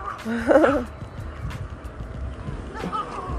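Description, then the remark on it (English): A small dog gives a brief, high yappy bark, with a fainter yip a couple of seconds later, over a steady rumbling, noisy background. “Look at that little dog. There he is again.”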